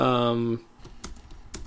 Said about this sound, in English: Sorry for this awkward silence, but I'm still typing.